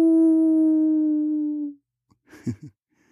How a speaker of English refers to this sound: Over and over, we heard the howls. One calling to another. One scout, followed by the pack. They carried on behind our house near the creek.